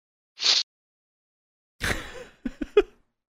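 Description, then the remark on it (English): A sneeze fit: a short hissing burst, a pause, then a louder explosive sneeze trailing into three quick, sharp catches of breath. No one talks. “I'm having like a sneeze attack or something.”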